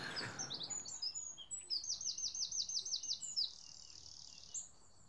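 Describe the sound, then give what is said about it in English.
A robin sings, a bright run of high warbling phrases with a fast series of repeated trilled notes, over quiet outdoor background with faint insect hum. “Oh, I love it that robins have a sing-off to resolve their conflicts.”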